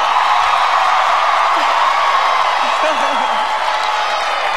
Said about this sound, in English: The crowd goes wild. I think this was in Brooklyn.